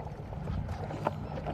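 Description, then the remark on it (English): A banana, protein powder and milk smoothie being shaken in a bottle: a steady, muffled sloshing and thumping for about a second and a half, with a brighter knock partway through. It is fairly quiet overall, with no voices. “The shake shaken up.”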